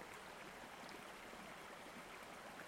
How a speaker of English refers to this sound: The only sounds Fenris could hear were the gushing of the waterfall and the fluttering of wings and chirping of birds outside of the cave.